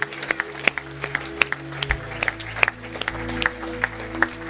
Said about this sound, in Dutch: Why don't we give these guys a hand right now? So deze mensen een applaus geven.